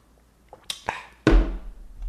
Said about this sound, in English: Drink. I don't know. Let's take a shot. Cheers.